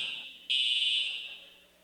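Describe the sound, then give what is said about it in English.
A fire alarm, a false alarm, blares with a piercing, continuous high-pitched electronic tone that jumps louder partway through, then gradually fades slightly, with no voices present. “So, it's a false alarm as far as that goes. So, we don't need to rush out of here.”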